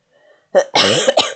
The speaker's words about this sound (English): But yeah, so if I cough, I apologize. I have a cough that is not going away. It's annoying the hell out of me.